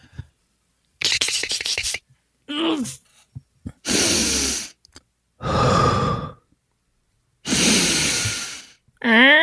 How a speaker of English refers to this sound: Well, really, you breathe deep because he's going to have his ear to the door and he needs to hear you breathing. Okay. Okay, which is why I really can't fake it.